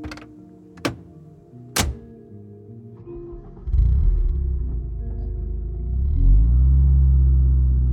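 A few sharp thunks like car doors shutting, then an engine rumbles to life and swells louder as the car pulls away down the street, with no voices.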